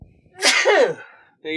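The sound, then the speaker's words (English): A single loud sneeze with a sharp breathy burst that trails off, followed by the start of a voice at the very end. “Bless you.”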